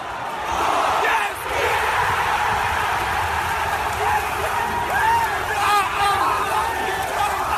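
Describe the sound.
A loud football crowd roars and cheers continuously at a playoff first-leg match against Reading, a dense wash of shouting voices with excited whoops and yells rising above it throughout.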